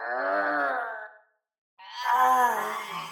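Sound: voice imitating a growl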